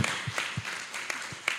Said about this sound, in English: How many people were surprised at the turn that this was a vampire movie? Yes. Can I get a round of applause for vampire movie? Woo!